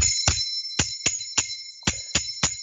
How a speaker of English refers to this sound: So you're basically just shaking this V-shaped construction, and the cymbals just hit each other because they're facing towards each other, and then there is shake. The physics of the instrument makes it produce sound.